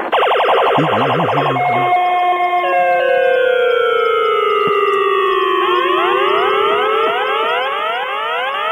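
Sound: siren wailing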